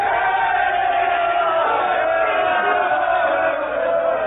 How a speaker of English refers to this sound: What means this shouting? I do fear the people choose Caesar for their king